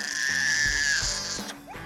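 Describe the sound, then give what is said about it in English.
An unhappy baby cries in one sustained, high-pitched wail that holds steady and loud, then breaks off into a shorter rising whimper at the end. “And what about the cries of an unhappy baby?”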